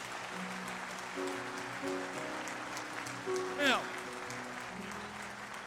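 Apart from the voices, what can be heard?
audience clapping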